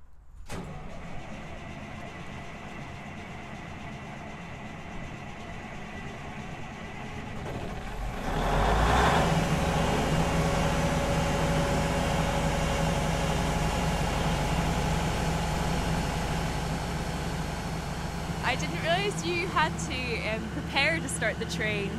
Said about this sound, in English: So the Barclay locomotive is about to be fired up in preparation for a yard shunt.